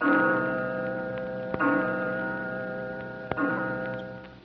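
clock ticking and striking

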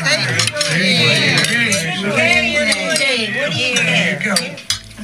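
glasses clinking

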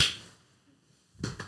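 single hand clap

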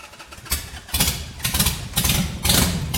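motorcycle engine revving

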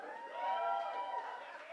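crowd chanting a name

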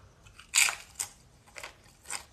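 crunching on a chip

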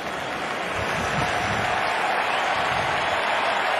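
stadium crowd cheering

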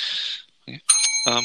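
bell ringing

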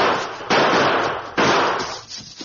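repeated gunshots

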